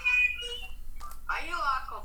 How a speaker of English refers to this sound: First of all, one second. I'm sorry. Okay. What? I got a phone call. Hey.